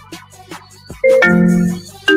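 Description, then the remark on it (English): A phone ringtone plays loudly, a bright electronic melody of sustained, buzzy tones that starts after a few soft percussive taps, cuts off, then begins again. No one speaks. “So you got the ringtone hooked up now.”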